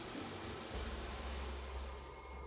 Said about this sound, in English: Just like last time, the shower turned on.